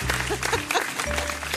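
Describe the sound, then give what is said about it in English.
A brief round of scattered hand clapping, fairly loud and uneven, with a steady low hum underneath and a few faint vocal tones mixed in. “I should get a round of applause because I didn't have to cheat.”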